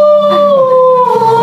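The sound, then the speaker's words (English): A voice holds a loud, steady, high-pitched tone for over a second, a wavering howl-like note that dips slightly and rises again, with no words spoken. “And he's like, that's so funny when you do those high-pitched tones.”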